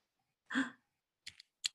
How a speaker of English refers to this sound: why are you lighting a lighter right now? What indie Tumblr shit is this? ASMR.